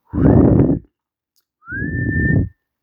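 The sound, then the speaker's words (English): Two fairly loud whistles from someone's lips, breathy and airy: a brief first note, then after a pause a longer tone that slides slightly upward and holds before stopping. “And he's like, oh, I'll just let out a little whistle.”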